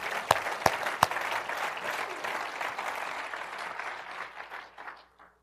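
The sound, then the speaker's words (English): An audience gives the Lord a clap offering at a morning church service, opening with a few sharp, distinct claps before swelling into a dense, steady wave of applause that gradually thins and fades out. “You can give the Lord a clap offering this morning.”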